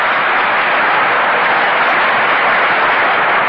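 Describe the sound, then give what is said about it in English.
A large stadium crowd at a baseball All-Star game cheers and applauds a fine fielding play in a steady, dense roar that stays loud and even throughout, with no voices standing out. “But that is all-star play, and listen to the crowd.”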